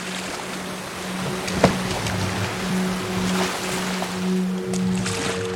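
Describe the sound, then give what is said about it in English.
A boat moves over lake waves, with a steady wash of water and a low, constant hum beneath it. A single brief knock sounds early on, and no one speaks. “So they got into a boat and set out.”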